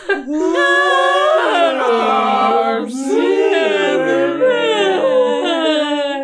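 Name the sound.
voice imitating whale calls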